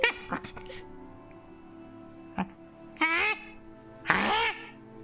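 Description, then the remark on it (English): A human voice mimics the call of John Beak, a completely black, toucan-like bird with a huge multicolored beak, giving several short, raspy, croaking squawks spaced apart, the last two longer and louder. “sometimes I don't know if this is a bird or a monkey, but this is John Beak.”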